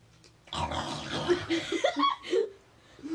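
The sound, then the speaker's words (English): A person makes rough, throaty grunting and snorting noises, imitating an animal like a warthog, in a series of short bursts lasting a few seconds. “My guy out here growling like a tiger. Ew. You just sound like a warthog now.”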